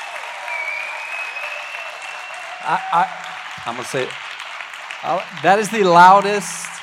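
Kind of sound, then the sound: crowd, loud applause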